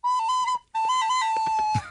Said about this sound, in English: That's some sort of flute. Yeah. Like a recorder.